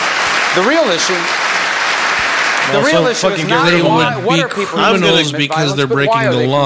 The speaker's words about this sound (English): I'm clapping for talking points.